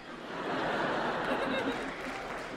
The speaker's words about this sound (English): I don't know why you would applaud that.